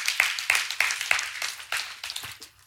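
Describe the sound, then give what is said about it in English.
An audience claps together in a steady, fairly quick rhythm, the crisp claps at moderate volume before tapering off near the end. No one speaks. “That is good. You can clap. Let's do it.”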